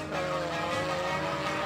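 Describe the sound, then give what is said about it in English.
A rickety car's engine roars loudly, a steady, revving drone that fills the whole moment as the vehicle speeds past. No one speaks. “Yehovah, how this car fit past me?”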